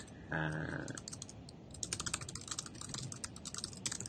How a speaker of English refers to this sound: So I'm just typing this in.